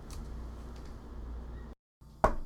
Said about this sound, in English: Who's that knocking at the door?